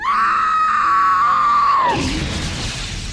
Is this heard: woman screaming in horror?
yes